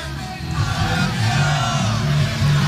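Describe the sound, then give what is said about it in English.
A dense crowd of football supporters cheers and yells continuously at a trophy parade as Benjamin Mendy goes past, by the Great Northern Railway Company Goods Warehouse: a loud, sustained roar with overlapping shouts and whoops rising and falling for the whole stretch. “and it goes from Benjamin Mendy, and all the supporters around here loving that, as you can imagine.”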